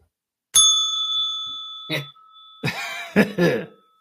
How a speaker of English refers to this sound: Well, it's got like ding a bell or something.